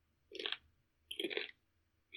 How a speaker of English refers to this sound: He can't hear us over the sound of him chewing.